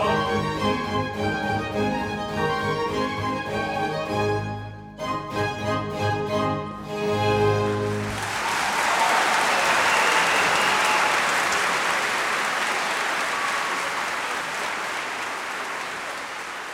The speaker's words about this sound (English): Thunderous applause at the end of the CD. You can almost imagine yourself there on tour with the Academy in Australia at the Melbourne Recital Centre, where this disc was recorded live in March of 2015.